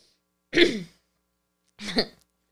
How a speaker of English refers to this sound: I have a cough. Excuse me. I don't have COVID.